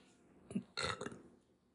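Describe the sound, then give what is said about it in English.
A brief throaty gulp is followed by a single loud, rasping burp lasting about half a second, with no talking around it. “If you burp, it's a demon, by the way, or like yawn or puke.”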